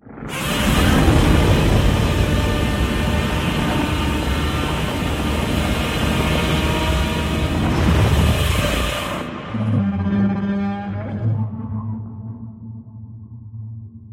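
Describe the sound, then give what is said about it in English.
The Godzilla roar from the second Godzilla trailer, posted on SoundCloud: a loud, rasping, metallic blast sustained for about nine seconds, then dropping into a lower, groaning tone that trails off. No voices. “Did you listen to the SoundCloud Godzilla roar?”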